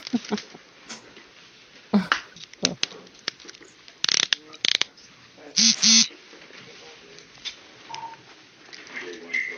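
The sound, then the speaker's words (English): Fancy handcuffs ratchet shut on a person's hands behind their back in a run of sharp metallic clicks, arriving in irregular bursts over several seconds against a low, muffled background. “I've never seen no handcuffs like this shit.”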